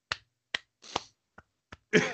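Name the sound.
soft golf clap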